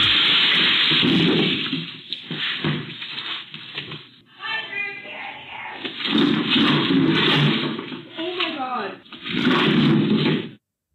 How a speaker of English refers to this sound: Hey, a video is going viral of a wild deer breaking through the window of a Minnesota butcher shop and crashing into everything, trying to get out. Here's a clip of the mayhem.